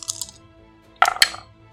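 Dice rolled for a spell's 3d8 radiant damage clatter on a hard surface: a light rattle at the start, then two sharp clicking impacts a fraction of a second apart, bright and fairly loud, with no talking.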